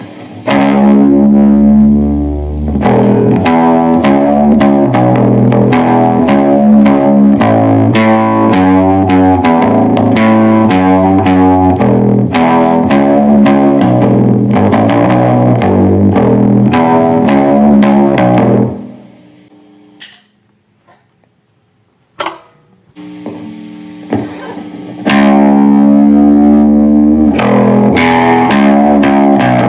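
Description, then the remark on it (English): A deep, heavily distorted electric baritone guitar, played with a thin heart-shaped pick, plays thick, sustained riffs, drops to a few sparse plucks and near silence, then surges back in loudly. “Danelectro Baritone - VS - Fender Squier Bass VI”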